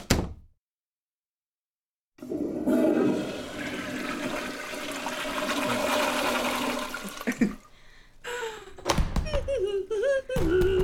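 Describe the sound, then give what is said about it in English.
A toilet in a bathroom stall flushes with a loud rushing whoosh that swirls for several seconds, preceded by a brief click, then tapers off into gurgling refill water and a few knocks and clatters. “Oh, you're out of the stall, so you should probably pull your pants up.”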